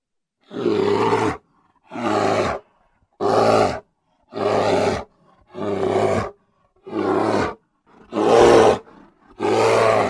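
A bear growls and roars in a steady rhythm, eight loud, rough, deep-throated bursts with short pauses between them, with no talking.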